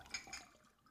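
A brief, quiet pour of a drink into a glass, splashy at first and then trailing off into soft trickling, with no talking.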